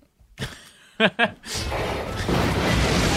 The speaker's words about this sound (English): Huge explosion. They duck under the water. Fade out.